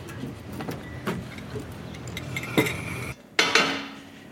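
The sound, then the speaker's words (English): Plates and silverware clink and clatter in scattered bursts as a table is set, with a few sharper metallic clanks standing out over a low, busy background of handling noise. “Oh, guys, we really need to start setting the table.”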